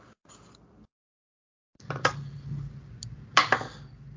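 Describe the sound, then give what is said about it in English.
Dice clatter and tumble across a hard tabletop, a short burst of rattling clicks with a low rolling rumble, ending in a couple of sharp knocks as they settle. “2-1 Yeah, you're gonna have to play this dice when we like play some games.”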